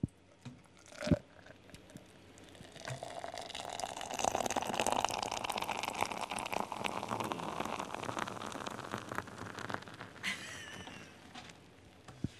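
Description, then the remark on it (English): Lager or cider sputters and splashes from a bar pump in an uneven, foamy hiss, steady for several seconds after a brief clunk at the start. “Is this the sound of lager or cider for your stout out?”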